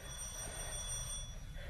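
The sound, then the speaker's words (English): A bell rings continuously with a steady, high metallic buzz over a low background rumble, never pausing for the whole moment. No one speaks. “Give the bell a ring.”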